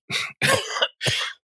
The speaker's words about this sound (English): That lingering cough, maybe.